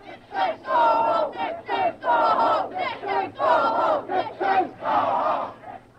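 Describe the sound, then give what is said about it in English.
A crowd of demonstrators showing distaste for American symbols and President Nixon chants and shouts in loud, rhythmic bursts, many voices rising and falling together in repeated cries with brief pauses between, as an American flag is ripped from a flagstaff and tossed to them. “Showing their distaste for American symbols as well as American presidents, the stars and stripes were ripped from a flagstaff and tossed to the crowd below.”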